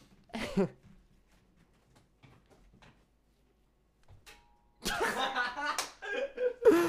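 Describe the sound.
A wet paper towel that had been in the freezer, thrown toward a garbage can, hits a light fixture with one sharp, soggy smack, then a quiet pause before people burst into loud laughter and excited talk.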